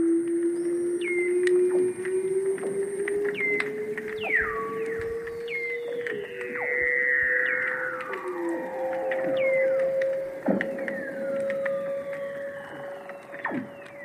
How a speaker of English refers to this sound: All of those sounds, the space sounds, those bird calls, jungle sounds, everything is seal song. There's a background buzz of clicks and crackling, that's probably snapping shrimps, but the seals, wow. I've never heard anything like that before.